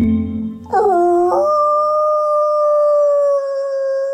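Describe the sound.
The head of a U.S. Fish and Wildlife wolf recovery program imitates a wolf howl, a practiced howl he uses to find wild wolves: a long, steady, rising-then-held wail that starts abruptly after a low murmur and sustains loudly for several seconds, clear.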